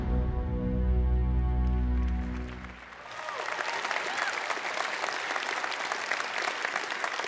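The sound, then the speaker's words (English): A sustained low musical tone fades out, then an audience breaks into loud, dense clapping that continues steadily for several seconds without speech. “Before you keep clapping, I do need to be honest with you guys.”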